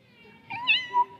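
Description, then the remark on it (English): A short, drawn-out meow imitated by human voices, rising then falling in pitch, with a brief second swell at the end. Clear, with no talking. “Everyone go, meow.”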